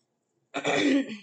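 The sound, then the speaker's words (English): A single throat clearing, a short raspy rumble lasting under a second after silence, then fading out. No talking. “Sorry about me clearing my throat.”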